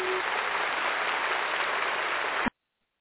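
A steady, dense round of applause, loud and even throughout, stopping abruptly after about two and a half seconds, then silence. No voices.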